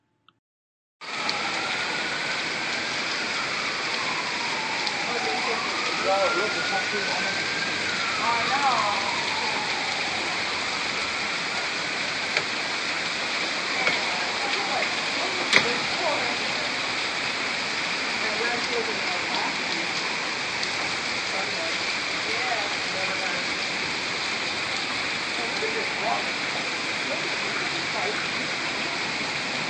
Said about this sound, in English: New Orleans was flooded by a massive amount of rain in a short period of time.